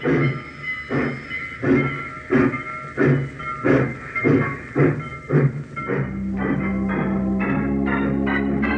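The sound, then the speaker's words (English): A steam locomotive chuffs in loud, evenly spaced bursts that gradually quicken as it gets moving, with a steady hissing, droning tone rising underneath in the final seconds. “The night train will pick her up.”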